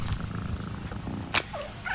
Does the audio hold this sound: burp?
no